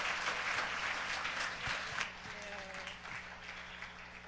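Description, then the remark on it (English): A church audience claps steadily for a pastor invited up from education, in a dense, sustained round of applause that holds strong, then eases slightly toward the end, with a faint tonal hum and occasional thumps underneath. “Can we give her a big round of applause?”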